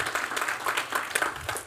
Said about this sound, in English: So I just want you to give yourselves one more big Round of applause. That's you guys.